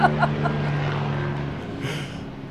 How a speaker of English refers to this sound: Take a small break for this helicopter.